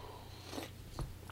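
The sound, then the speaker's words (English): A quiet, close-up sip of a drink: two brief wet mouth sounds, a slurp and then a swallow, over a faint steady background hum, with no talking. “So let me just take one for now. Let me take a sip.”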